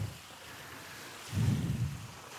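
water splashing

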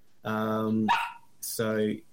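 dog barking

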